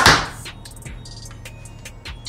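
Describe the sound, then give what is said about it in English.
A Hoyt Helix bow fires a 687-grain arrow at 234 feet per second: one sharp snap and thump of the string at the start, then near quiet with a few faint ticks and clicks trailing off. “And then our 687 grain arrow.”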